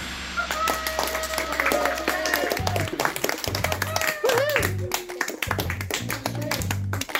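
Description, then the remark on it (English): Pupils of St. Killian's school in Cavan applaud themselves after a quiz, with dense, rapid clapping throughout, joined by high-pitched voices calling and cheering over the claps, plus a low hum underneath. “Let's give yourself a round of applause.”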